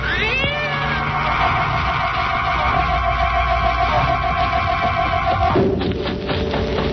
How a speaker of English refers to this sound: Yes, I can see it now. It's a cat. And there's a woman with it.